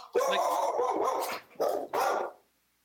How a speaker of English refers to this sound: Whose dog was that? That's my asshole dog.